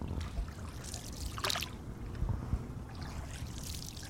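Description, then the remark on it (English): A boat glides through calm canal water at Xochimilco, in the southern outskirts of Mexico City, with soft splashes and gentle lapping against the hull, plus a brief brighter swish of water near the middle. No one speaks. “But there is this other part of the lake, quieter, with fewer tourist boats, a place with more chinampas, the floating gardens that still survive 2,000 years after they came to be.”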